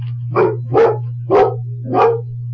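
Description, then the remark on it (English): A dog barks four times in a steady rhythm, each bark loud, over a constant low electrical hum with no voices. “My doorbell just went off. Oh, yeah. Anyone? Also known as the dog.”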